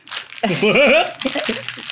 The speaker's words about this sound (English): This is the intro ASMR. Of the show. Here I am, crinkling the paper.